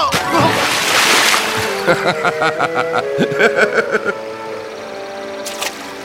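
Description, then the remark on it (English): Loud splashing and sloshing as someone wades into a swift river to see how deep it is fills the first couple of seconds, then gives way to vocal sounds, with faint water movement continuing underneath. “Do you think you can cross it, little one? Oh, come on, it's just a little water.”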